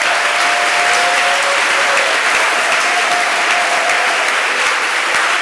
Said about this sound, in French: Applaudissez pour Salomon.